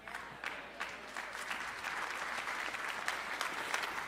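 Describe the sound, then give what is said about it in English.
Light, scattered golf-clap applause from a morning audience, a steady patter of soft individual claps lasting about four seconds, fairly quiet and polite rather than enthusiastic, with no talking over it. “I appreciate that golf clap.”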